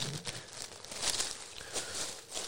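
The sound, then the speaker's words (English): A drying towel crinkles in a steady stream of soft, dense crackles and rustles, bright and hissy, with small bursts rising and falling throughout. No one speaks. “Listen to the sound of the crinkle. Give away a drying towel, which is very much muffling my voice right now.”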